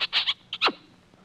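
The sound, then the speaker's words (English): A quick run of loud, squeaky smacking kisses, four short bursts with the last drawn out and sliding downward, then quiet, as someone kisses the winner of a winning ticket. No one speaks. “Well, I guess I better kiss the winner”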